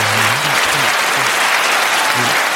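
Loud, dense applause sound effect played from a soundboard, a steady wash of many hands clapping for the whole stretch, with faint voices murmuring underneath.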